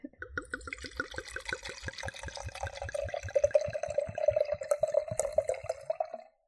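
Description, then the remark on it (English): Liquid glugs steadily from a bottle into a glass, a quick rhythmic gurgle whose pitch rises as the glass fills. Close and fairly loud, with no voices. “I also left the pouring to be live on here because I know how much you like the sound.”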